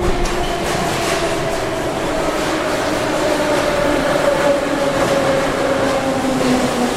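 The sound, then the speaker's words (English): A metro train rumbles steadily through a metro station in Kyiv, Ukraine, with dense low-frequency noise, faint metallic hums and a rising tonal whine as it moves, continuous and fairly loud throughout. “Now, that was obviously that was we were in the metro station when warning came on.”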